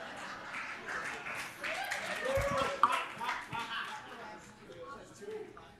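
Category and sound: crowd, clapping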